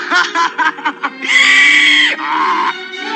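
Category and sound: animal, donkey braying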